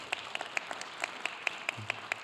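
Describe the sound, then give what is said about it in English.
Brief applause from a church audience at Grace Church as a pastor begins to preach: a steady run of about ten sharp claps at an even, fairly quick pace, fairly soft and with no voices over it. “Wait to hear the message, and then you can clap after.”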